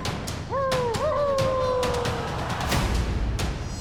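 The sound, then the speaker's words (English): Wolves howl together in a short, rising-then-falling cry that trails off over a couple of seconds, set against a noisy backdrop with scattered clicks and rustles. “Not here with the wolves, huh?”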